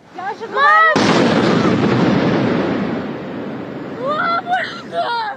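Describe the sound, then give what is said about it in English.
A sudden, loud explosion from a drone strike in Moscow, Russia, erupts and rolls off into a long, rumbling decay over several seconds, with raised voices audible just before the blast and again as it fades. “Ukraine appears to be taking the fight to inside Russia after explosions erupted from a drone strike in Moscow.”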